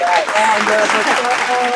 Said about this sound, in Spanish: Ok, entonces, un aplausito para ella.